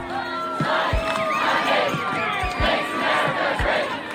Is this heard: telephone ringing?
no